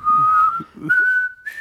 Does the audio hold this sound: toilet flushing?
no